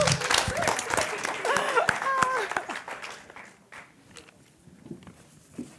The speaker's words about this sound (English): Can I ask you please to give a big round of applause for Dee Dee?